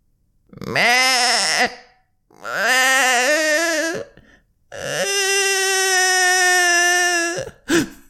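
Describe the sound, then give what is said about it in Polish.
A baby's strange, eerie crying: three long, loud wailing cries, wavering and bleat-like, with brief pauses between them and a short final yelp. No one speaks. “Słysząc ten dziwny płacz dziecka, Romuald jakby chciał się zatrzymać.”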